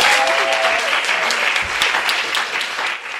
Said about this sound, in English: If you will line up along this side, and you will be able to speak to them and get your autograph signed, and we're going to give them a round of applause.